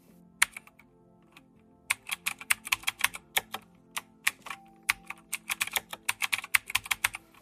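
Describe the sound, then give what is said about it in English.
Rapid typing on a computer keyboard, with bursts of crisp key clicks after a brief pause, tapping along at an uneven, busy rhythm with no voices. “The behavioral biometric identifier retrieved through input by a keyboard, known as keystroke dynamics, of course only gets better over time, able to take into account that your typing varies over a day or days and can be affected by external factors”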